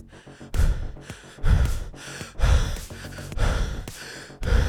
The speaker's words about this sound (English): A close-up of the PA as he conjures every bit of speed he has left. He pants, completely out of breath, running for his fucking life.